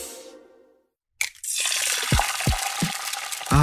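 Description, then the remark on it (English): After a moment of near silence, bacon starts sizzling in a pan: a steady, bright crackling hiss broken by a few soft pops and spatters, with no voices. “Nothing like the smell of frying bacon in the morning.”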